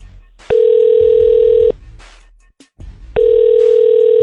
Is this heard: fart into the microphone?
no